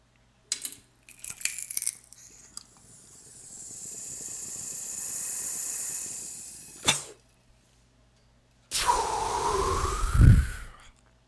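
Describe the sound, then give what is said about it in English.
A few sharp clicks, then a long, steady crackling inhale of smoke from Cheesy Mac, a hybrid, a short pause, and a loud, breathy exhale that ends with a rough catch in the throat. No talking. “Smoking on Cheesy Mac today.”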